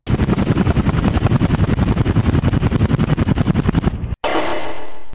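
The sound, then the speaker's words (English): A helicopter approaching: loud, rapid rhythmic chopping of rotor blades thumps steadily for about four seconds, then cuts out abruptly and gives way to a burst of harsh, hissing noise. “But then, behind me, a helicopter.”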